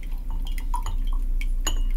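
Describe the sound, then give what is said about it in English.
Lemon juice drips into a glass as lemons are squeezed in a squeezer to measure 3/4 ounce for a shaker, a handful of small, irregular plinking drops, fairly quiet, over a steady low background hum. “Now we're going to go with 3/4 ounce of squeezed lemon juice. So get those lemons in that squeezer.”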